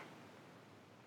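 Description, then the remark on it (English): A short, wet slurping noise made close to a microphone, a continuous crackly, hissing mouth sound lasting about a second with no talking. “I puked all over my mic and then I slurped it back in.”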